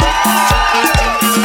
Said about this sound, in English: Yep, I just used a live recording of an audience to cheer another live recording of an audience.